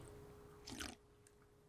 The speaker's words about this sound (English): Make sure that the audience can hear the slurps.